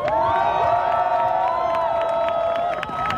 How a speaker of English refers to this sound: They're arresting people now, so can you go? Okay. So they are arresting people again. So can we give them a big cheer?